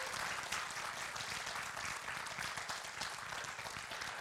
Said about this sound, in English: What a joy. What a great program. Can we just give them a round of applause and praise the Lord?